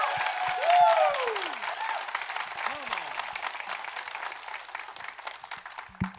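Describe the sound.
A crowd claps and applauds loudly and steadily, a dense wash of many hands with a few cheering voices rising over it, the applause tapering only slightly toward the end.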